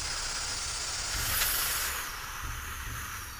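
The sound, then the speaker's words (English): A steady, broad hiss of smoky haze pouring through a slightly opened door into a room, swelling slightly in the middle before settling back to a constant rushing sound, with no voices. “Through the door, a smoky haze starts to pour into the room.”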